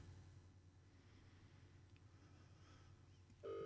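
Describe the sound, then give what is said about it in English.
A steady low hum of an open phone line, then an electronic ringing tone abruptly starts near the end, loud, as an outgoing phone call begins to ring. “It's ringing.”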